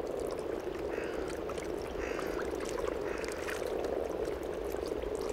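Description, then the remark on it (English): A dense, unbroken chorus of frogs and toads croaking and trilling together, steady and fairly loud throughout, with many overlapping calls and a few higher chirps standing out. “The social life of frogs and toads is a less precarious affair.”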